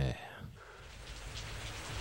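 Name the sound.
rain falling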